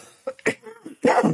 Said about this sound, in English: Sorry guys. Sorry for the coughing again, guys. I've been teaching for the last 2 days solidly, and my voice is showing me.